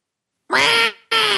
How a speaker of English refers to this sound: Oh boy, we had some Skype stuff going on. It came out as almost like an owl. Almost like an owl sound. Yeah. Yeah, it was kind of like that.